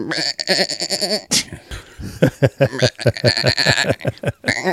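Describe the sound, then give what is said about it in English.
A person bleats like a goat, imitating the goat speech of satyrs for a cameo audition as a satyr in Peter Jackson and the Olympians, in a long, wavering, nasal voice, repeating quavering bursts with a short breathy break in the middle, loud and unaccompanied. “But the satyr gods speak goat.”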